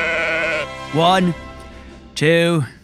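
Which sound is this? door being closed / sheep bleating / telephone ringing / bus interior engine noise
sheep bleating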